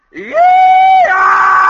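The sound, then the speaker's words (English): A man alone lets out a loud, drawn-out yell that rises in pitch, holds steady, then breaks into a harsher, strained cry, imitating a Civil War rebel yell. “I'm just doing a rebel yell here to kind of kick things off.”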